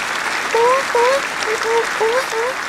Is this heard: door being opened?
no